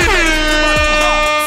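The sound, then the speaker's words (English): A loud, sustained air horn blares, its brassy, harmonic-rich tone holding steady for over a second with slight pitch wavering, and no voices underneath. “I got my cup in my hand, air horns.”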